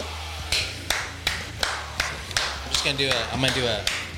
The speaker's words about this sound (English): I'm gonna do an edit to where they switch by themselves. Nobody's even gonna know. You know what I mean? As soon as you clap.